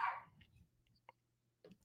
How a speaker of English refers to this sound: Type Y for yes if you can hear my dog going crazy.